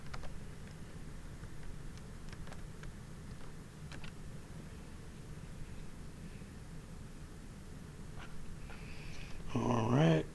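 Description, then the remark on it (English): Scattered light clicks of keyboard typing as someone types a message on Facebook, irregular and fairly faint, over a steady background hiss, followed by a brief louder rustle at the very end. “Now I'm typing on Facebook to a person who asked me for my number.”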